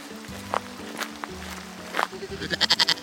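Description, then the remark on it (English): A goat bleats several times, with short cries early on and then a rapid, quavering run of bleats toward the end, fairly loud over a low steady hum. “No, I am a goat.”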